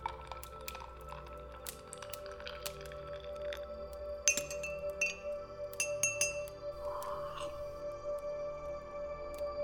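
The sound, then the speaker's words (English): Delicate china clinks as an old woman sets her teacup against its saucer several times, bright, with soft slurping sips of tea and faint murmuring. “An old woman sipping tea.”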